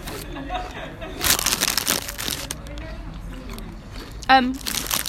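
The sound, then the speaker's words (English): Crisp, crackly crunching in a few bursts, loudest early on, as puffed crisps are bitten and chewed, with a brief voiced murmur near the end. “Are they a bit like Pringles? They're sort of puffed somehow, yeah.”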